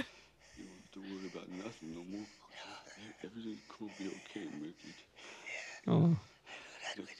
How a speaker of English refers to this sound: Great audio. Yeah. Just heavily breathing. He's dying.